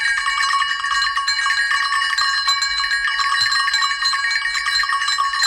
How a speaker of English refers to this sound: But as he looked, he saw this bell begin to swing. It swung so softly in the outset that it scarcely made a sound. But soon it rang out loudly, and so did every bell in the house.